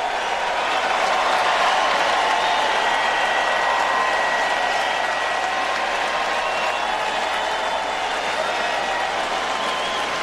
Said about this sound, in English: It's not the gun that pulls the trigger. It's the person holding the gun. Yeah, I'm leaving the applause there for you to hear.